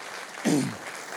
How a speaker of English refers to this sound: Why don't we just give them another round of applause?